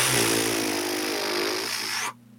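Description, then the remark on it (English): The Montu inverted roller coaster roars along its track in a loud, steady mechanical rumble with a droning hum underneath, holding for about two seconds before cutting off abruptly. “That bitch be purring. Purring. I mean, that ride was something else this past weekend.”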